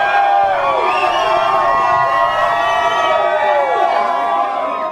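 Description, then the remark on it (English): A wedding crowd on the show What a Wedding cheers loudly, many overlapping voices whooping and shouting with rising and falling high-pitched calls, sustained without a break for the whole few seconds. “More noise. Yeah. More white woo. People noise.”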